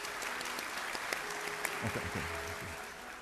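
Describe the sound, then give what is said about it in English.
A crowd, asked to give a medium clap, claps steadily at a moderate volume, a dense, continuous patter of many hands with a few sharper individual claps standing out and a faint voice murmuring underneath. “Okay, I want you to clap a medium clap.”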